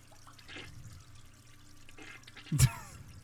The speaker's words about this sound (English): It's another toilet. Wow, that toilet was running way before it flushed. That was the Hershey squirts before the toilet flush.